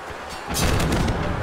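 A barrage of gunfire and booming cannon shots from a battle aboard a ship erupts at nightfall after a quiet moment, several sharp blasts in quick succession over a low, rumbling roar.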